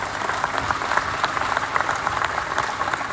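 An audience applauds all of the speakers at an event, a steady, dense wash of many hands clapping at a fairly even level for a few seconds, with no clear voices over it.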